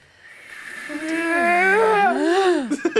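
Three voices scream together in long, overlapping wails, their pitches sliding up and down against one another, rising to a loud sustained peak before breaking off abruptly near the end.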